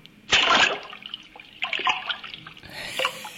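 Calm sea water around a small drifting boat laps and splashes softly in a few uneven swells, a gentle sloshing with small drips and trickles in between.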